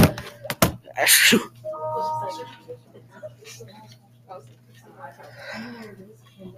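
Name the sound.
sneeze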